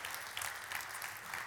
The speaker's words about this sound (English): I want to give a huge shout out to just our dream team is so stinking amazing. Can we clap for our dream team? We love those guys.